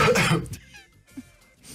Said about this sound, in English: Hey, guess whose cough is that? Do you want to hear it again?